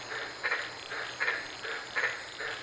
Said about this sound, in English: I was sitting in my car this night in Queensland, Australia. My microphone was placed over 200 feet away, and I was monitoring these green-lipped frogs.